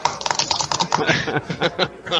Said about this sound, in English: I did notice I got like a typing problem on our podcast. I hear myself like in the background.